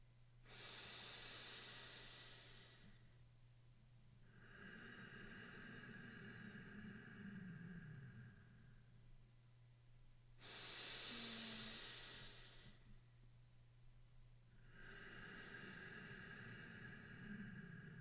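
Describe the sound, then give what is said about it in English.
Slow, deep breathing through the nose with the mouth closed in a guided breathing exercise: two long airy inhales alternating with two softer hissing exhales, steady and unhurried over a faint low hum, with no talking. “Now, through the nose, take a deep breath in. And with the mouth closed, let the air go.”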